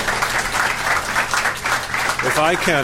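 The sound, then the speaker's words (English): An audience claps steadily for a few seconds for the panelists at the close of a panel event, a dense, even wash of applause, and a man's voice begins speaking over it near the end. “Another round of applause for our panelists.”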